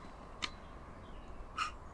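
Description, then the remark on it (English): Two harsh, rasping screeches from a Eurasian jay, spaced about a second apart, against quiet outdoor background noise. “So how do you know it's a Jay?”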